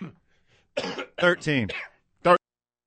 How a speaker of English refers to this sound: My bad on that cough, boys.